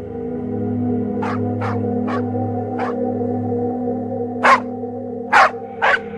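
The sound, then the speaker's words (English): Dogs bark violently on a small Kentucky homestead after dark, over a steady low hum: four quicker, softer barks at first, then three louder, sharper barks spaced apart near the end. “Lucky's dogs began to bark violently as if an intruder was on the property”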